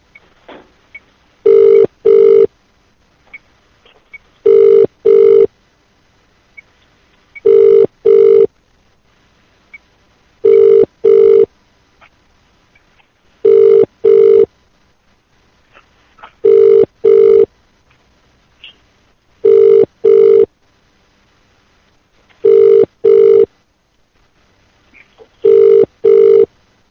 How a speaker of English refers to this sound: Okay, the system should be dialing them in just a moment. There we go.